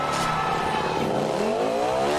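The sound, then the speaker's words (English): A motorcycle engine revs loudly and continuously, its pitch climbing steadily over a couple of seconds as it accelerates, with no voices present, before Travis Pastrana's jump replicating one of Evel Knievel's famous motorcycle jumps in Las Vegas. “He replicated three of Evel Knievel's most famous motorcycle jumps in Las Vegas.”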